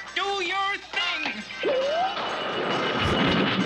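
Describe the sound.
A cartoon transformation effect: a brief shouted voice, then a loud smashing crash as a character smashes his rings together, swelling into a sustained rumbling, crackling roar lasting a couple of seconds as rocks fly in and attach themselves to him.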